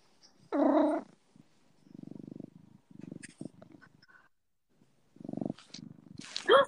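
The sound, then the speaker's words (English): A male cat purrs in low, rumbling pulses, in two stretches separated by a short pause. A brief, louder cat vocalization comes just before the purring starts. “Yeah, he is purring.”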